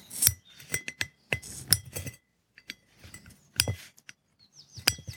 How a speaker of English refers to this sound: Using it to take, yes, the lid off a beer bottle. Not covered under warranty.